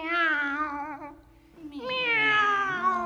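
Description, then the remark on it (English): A cat meows twice, two long, drawn-out, fairly loud cries separated by a short pause; the second slides upward in pitch before holding steady. No one speaks. “Meow. Hello, kitty cat.”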